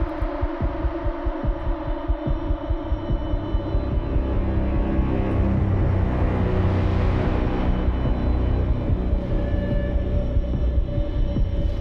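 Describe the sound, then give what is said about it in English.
Thumping, Blade Runner-esque synth film soundtrack music played through a sound system: heavy low pulses beat at the start, then a dense, rumbling drone with sustained tones builds and stays loud throughout, with no voices. “See, this is a sweet soundtrack, man.”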